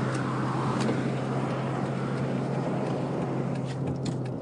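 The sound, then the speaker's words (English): A car drives along steadily on the way to a store, a constant engine hum under broad road and wind noise, fairly loud throughout with no pauses or talking. “I can drive to the store and get more things.”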